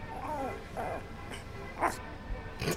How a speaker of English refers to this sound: Those are like dogs.